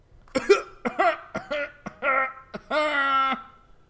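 A man, crouching down, coughs in a rapid string of rough, throaty bursts, some short and sharp, ending with a longer strained, voiced hack.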